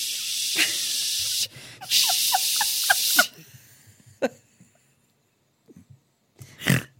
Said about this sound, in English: Whoa. It is so loud. It's so loud. It's windy and ocean sounds.